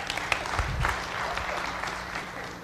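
A crowd claps steadily in a dense, sustained burst of applause, fairly loud, with no voices standing out above the clapping.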